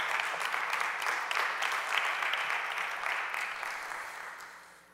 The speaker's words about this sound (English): Come on, give God a hand clap of praise for that.